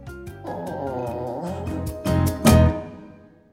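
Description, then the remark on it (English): A comedic fart sound effect played by a voice assistant asked for a cheeky fart: a drawn-out, buzzy, wobbling blat that ends in two louder sputtering bursts before trailing off. No one speaks. “Here comes a cheeky fart.”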